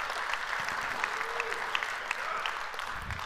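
A church audience applauds a volunteer coming to the stage, in steady, dense clapping, with a few sharper claps standing out and no one speaking over it.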